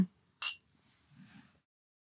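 A single bright clink of glasses touching in a toast, crisp with a brief ringing tone, followed by a soft low murmur of background movement.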